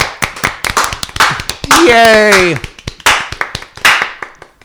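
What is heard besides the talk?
enthusiastic audience applause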